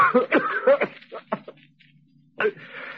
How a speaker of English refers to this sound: That blasted cough, what does it?